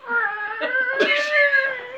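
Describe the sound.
A voice imitates the muffled sound of a box opening with a drawn-out, wavering, whiny tone, almost cat-like, held for about two seconds, fairly loud with no other talk.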